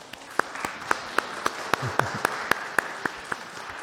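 An audience gives a round of applause, with crisp claps landing in a steady, even rhythm over a soft hiss and a faint voice murmuring briefly midway.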